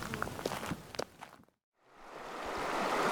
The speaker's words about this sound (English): How are we going to get across this river?